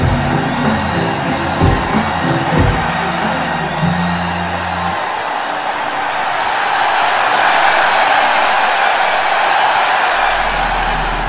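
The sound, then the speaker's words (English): A loud crowd roars with whoops and yells, then breaks into sustained, dense applause and cheering that keeps building, energetic throughout, as an audience reacts to a band performing cover songs. “and the audience lost their minds with cheering and applause.”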